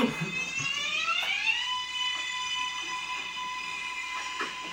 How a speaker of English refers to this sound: We're going to visit one of my favorite trains. It's called the R188. Runs on the 7 line only. Okay. You ever want to go to Queens? This is what you'll take. Here you go. So here's what it sounds like.